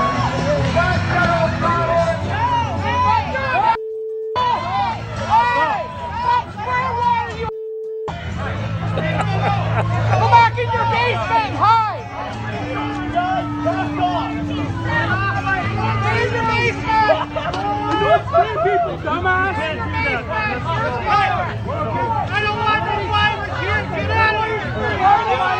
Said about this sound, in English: There's a lot of yelling going on